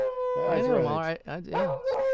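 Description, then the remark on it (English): A loud howl sound effect: long wavering canine howls that rise and fall in pitch, one sustained howl followed by a shorter second one after a brief dip. “Give us a howl out.”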